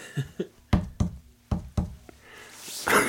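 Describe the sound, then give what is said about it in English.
Several sharp knocks on wood, about six hollow raps in loose pairs, fairly loud, followed by a brief rustling noise at the end. No one speaks. “Knock on wood.”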